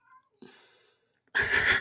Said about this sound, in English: That's my cat. Featuring Archie. Featuring Archibald, the cat. The loudest cat in the West. He doesn't give up. What a persistent cat.